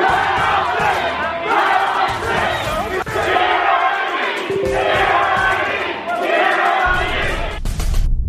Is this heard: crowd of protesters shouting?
yes